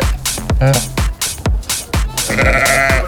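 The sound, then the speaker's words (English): Sheep bleat on a farm in short, wavering calls, with a longer, quavering bleat toward the end, all over a steady, low, thumping beat. “It's I see chickens, I see turkeys, I see a cow, and we see some amazing sheep, and we see some pigs,”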